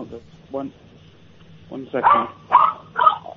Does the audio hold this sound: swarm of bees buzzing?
no